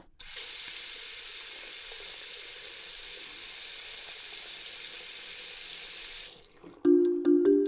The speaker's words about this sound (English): This sounds like kitchen sink water. So like a faucet? A faucet, there you go. That's the word.